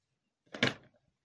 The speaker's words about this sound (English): gets out, closes the car door behind him, trying to be casual, but not doing a great job. He's not angry enough to slam it, but he's not chill enough to gently close it either.